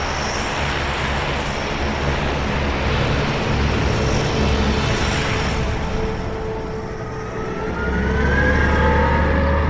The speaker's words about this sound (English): The airport shuttle, Ivan the Terrabus. A road warrior-looking behemoth that takes us slowly towards our destination.